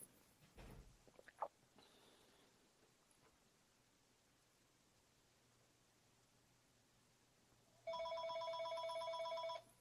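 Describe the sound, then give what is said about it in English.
A telephone rings loudly and steadily for about two seconds near the end, a bright rapid trilling tone, after some quiet bumps and rustling with no one talking. “I'll pick up my phone.”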